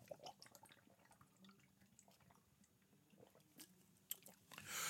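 Quiet sipping from a drink after a toast: soft wet slurps, swallows and small mouth clicks over a low hum, ending with a louder breathy exhale. No one speaks.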